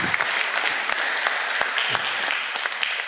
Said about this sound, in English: That's great. Give everybody a round of applause there. That was great.